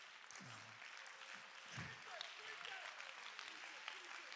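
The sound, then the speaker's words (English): An audience claps steadily, a dense wash of many hands with a few murmured voices mixed in, sustained throughout. “Come on, clap your hands back here.”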